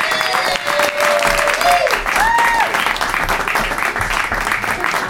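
Loud, steady audience applause welcoming a comedian onstage in Portland, dense clapping with a few whoops and cheers rising over it, continuing evenly throughout without any speech.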